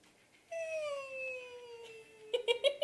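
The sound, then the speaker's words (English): A voice imitates an expiratory wheeze: a sustained, whiny, cat-like tone lasting nearly two seconds and slowly sliding down in pitch, followed by a few short, choppy bursts. “Let's do wheezing first.”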